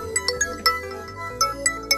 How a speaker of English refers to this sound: Guys, my phone is ringing. I don't know what to do. So, okay. It's a new phone.